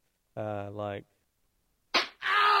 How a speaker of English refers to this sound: Like that was a slap, but it's funny, different things.